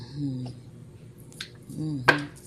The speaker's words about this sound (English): I was listening to it, but it sounded like you just chopping a wooden board, chopping board. It don't even sound like you got nothing on it.